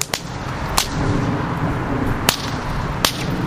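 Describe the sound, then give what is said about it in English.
Four sharp, loud whip cracks from a performer's 6-foot-long whips, cracking flames into the night sky at a fire-dancing jam in Chicago, snap out at irregular intervals over a steady murmur of outdoor crowd noise and ambient hubbub. “A guy with 6-foot-long whips starts cracking flames into the night sky.”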